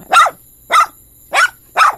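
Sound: dog barking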